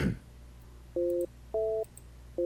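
A telephone busy signal while a phone number is being dialed: short, steady two-tone beeps repeating in an even on-off rhythm, heard clearly over a quiet line after a brief click, with no one talking.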